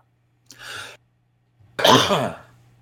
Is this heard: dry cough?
yes